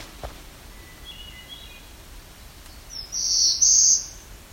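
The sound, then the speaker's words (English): A black-throated blue warbler sings a short, loud, buzzy phrase of a few rising notes near the end, after faint high chirps earlier, against a quiet outdoor background up an escarpment, with no talking. “That's a black-throated blue warbler.”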